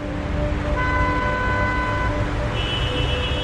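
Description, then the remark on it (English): Steady traffic rumble with several car horns honking in overlapping tones, one long blast after another, fairly loud, like a busy street. “Or the sound of traffic.”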